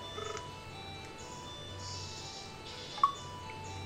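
A phone call to a home landline number being dialed and then hung up: a few quick electronic beeps at the start, then a steady low hum of line tones and one sharp blip near the end, with no voices.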